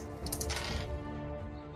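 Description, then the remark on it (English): Four dice, rolled at once for a damage roll in a tabletop game, rattle and clatter across a hard tabletop, a quick burst of small clicks that settles within a second over a low, steady background hum. “Okay, rolling 4 dice at a time.”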